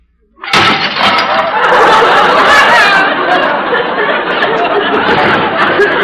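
A sudden loud crash of dropped dishes (plates, soup bowls, cups and saucers) hitting the floor, with sharp shattering and clattering for a couple of seconds, then a long, steady wash of crowd laughter and chatter.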